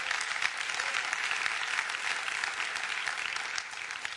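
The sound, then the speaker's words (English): Steady applause from women in a church audience during a sermon, a dense wash of many hands clapping at once, sustained at an even level for several seconds without a break. “Okay, ladies, don't clap too much.”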